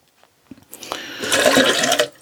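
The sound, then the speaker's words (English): Tea pours steadily into a cup, a bright splashing trickle lasting about a second after a couple of soft taps, then stopping abruptly. No voices. “I'm just going to pour myself out a cup of tea.”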